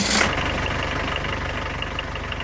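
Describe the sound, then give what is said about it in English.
A boat engine, started with a new push-button starter switch, catches with a brief burst of noise, then settles into a steady idle with an even, rapid chugging pulse. No voices. “Ah, she starts like a firefly on a dark summer night.”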